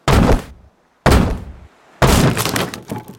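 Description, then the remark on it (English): Three heavy blows slam against a nicely crafted wooden door about a second apart, each booming and rattling. The last one ends in a long crunching, splintering break as the door is forced open. “What a shame. That was a nicely crafted door.”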